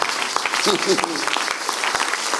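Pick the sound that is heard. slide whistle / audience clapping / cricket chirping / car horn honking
audience clapping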